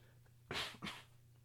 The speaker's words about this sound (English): Cough so you see that this is unedited, because I don't care.